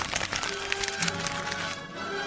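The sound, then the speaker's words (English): A piece of typing paper being crumpled to imitate the sound of fire, giving dense, irregular crackling and rustling bursts that carry on steadily for a couple of seconds. “Let's make the sound of fire with a piece of typing paper.”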